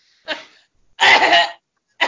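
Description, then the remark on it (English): Three loud coughs with no talking: a short sharp one, then a longer harsh, rasping one, and a third starting just as the sound ends. “Yeah, all you have to do is cough.”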